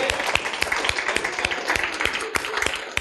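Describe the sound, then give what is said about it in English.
A crowd applauds steadily, dense overlapping claps with a few sharper, closer hand smacks standing out, sustained at moderate loudness throughout without a clear break. “I think let's just give him a round of applause because he's just done so much.”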